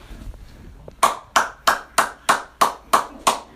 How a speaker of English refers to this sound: We're not going to reveal his secret, but he just clapped, and he only used one hand. So let that marinate.